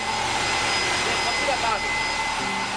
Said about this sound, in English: I went inside one of the buildings where they had a turbine moving or spinning using the steam coming from underground. And it was spinning at a very high speed and it was incredibly loud.